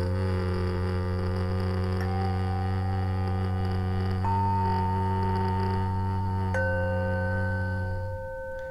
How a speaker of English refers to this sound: So we breathe in this space by taking a deep inhale into the heart, into that wound. And on our exhale, we hum.